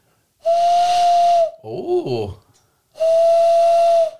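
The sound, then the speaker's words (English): Two loud, breathy hoots imitating an owl, blown through cupped hands, each a steady tone lasting about a second, with a brief spoken exclamation between them. “I used to be able to make an owl noise just using my hands.”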